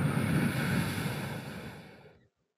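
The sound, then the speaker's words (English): A slow, airy exhale after a deep breath in and a hold, let out almost as a sigh of relief in a breathing exercise, a steady breathy rush lasting about two seconds that gradually softens and trails off into silence, with no talking. “Breathing in, holding, and breathing out.”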